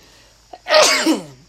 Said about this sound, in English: I got a sneeze coming on.